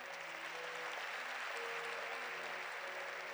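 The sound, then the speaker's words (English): A church audience claps for Jesus after worship, a dense wash of many hands filling the room at an even, sustained level, with a faint tonal hum underneath throughout. “That still doesn't sound like it's a clap worthy of the one that died for you, that rose again in victory.”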